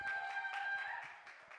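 A crowd breaks into applause, many hands clapping in a dense, steady patter that eases slightly toward the end, with a faint steady tone humming underneath.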